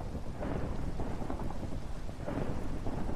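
Steady rain pours down while low thunder rumbles and rolls through the background, swelling twice in deep, sustained waves. No voices are heard.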